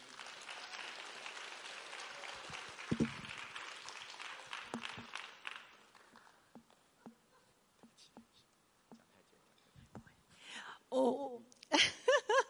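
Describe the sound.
A crowd applauds steadily for about six seconds to welcome a pastor, a dense wash of clapping that then thins out into a few scattered claps, followed by some brief murmuring and voices.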